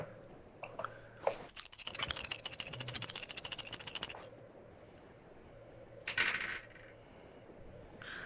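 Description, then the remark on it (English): A player rolls dice in a tabletop role-playing game: they rattle and clatter across a hard tabletop in a quick burst of sharp clicks lasting about two seconds, followed by a brief, lighter clack a moment later; no talking. “I am at plus +4 after the roll”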